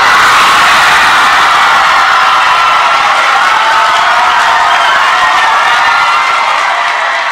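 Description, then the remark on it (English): A large audience at the Albert Einstein College of Medicine erupts in loud, sustained cheering at the announcement that the college will be tuition free, with whoops and shouts blending into a steady roar of voices that holds for several seconds without letting up. “Now, the only people in that audience that didn't cheer are the ones that are about to graduate in May.”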